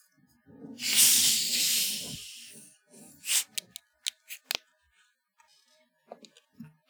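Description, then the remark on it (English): A bottle of Red Pop soda is cracked open with a loud, breathy hiss lasting over a second, followed by a scatter of short clicks and taps as the cap is handled. “I love whenever you crack one of these open and you get that hiss, right?”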